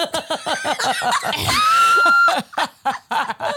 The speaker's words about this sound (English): Feels good. It feels good to yell. Listener, did you understand that that yelling was a joke?